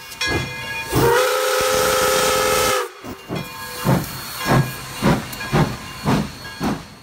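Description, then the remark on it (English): A steam train's whistle blows loudly for about two seconds over a rush of hissing steam, then the engine chuffs in a steady rhythm of about seven puffs. “And so she took the train ticket and some money, and she got on the long train ride.”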